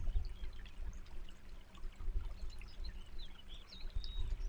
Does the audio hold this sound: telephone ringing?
no